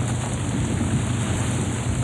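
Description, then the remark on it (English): Rough sea waves churn around a boat in an easing storm beneath a steady roar of gusting wind, a continuous, loud wash of water and air with no voices present. “Storm's easing up, boys, so we just look for the lights on the shore to guide us in.”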